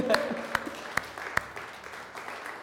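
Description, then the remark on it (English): Light, scattered audience applause in a church, for a picture of the speaker's baby daughter: a handful of sharp claps roughly evenly spaced over the first couple of seconds, with faint voices underneath, then fading into room noise. “Yeah, that's where you need to clap right there.”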